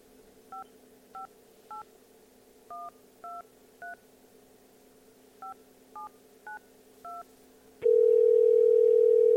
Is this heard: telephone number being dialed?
yes